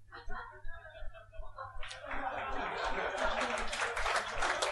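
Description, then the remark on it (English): A voice speaks briefly, then a scattered smattering of audience applause breaks out and carries on steadily to the end, moderately loud, with faint voices mixed underneath. “My favourite kind of applause is a smattering, so thank you so much.”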